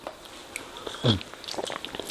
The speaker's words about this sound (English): On the sips. Tastes like coffee. Yeah. But it is like a very medium light kind of subtle roast.